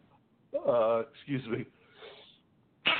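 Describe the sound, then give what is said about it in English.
A single sneeze: a short voiced intake swelling into a sharp, breathy burst, then a soft trailing exhale before another sound starts at the very end. “Yeah, I just had a little sneeze there.”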